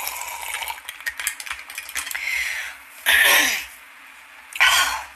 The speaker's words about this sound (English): Emphysema cough. I never should have quit smoking. It probably would have healed it.